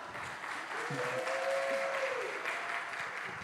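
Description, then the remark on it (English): A crowd claps steadily throughout, a dense, even wash of applause at moderate loudness, with a brief faint tone sliding underneath midway. “I'd like more applause, please.”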